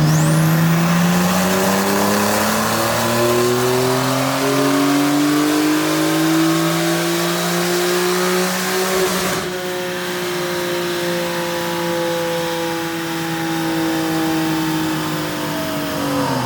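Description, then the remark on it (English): The 3-liter twin turbo engine of a Porsche 991.2 (second-generation 991) base Carrera, rear-wheel drive, making around 365 to 370 horsepower, revs and accelerates loudly, its rising harmonic tones sweeping upward, then drops and climbs again through another gear, sustained with no talking. “Friend Ben has the 3-liter twin turbo engine inside of his 991.2, the second generation 991.”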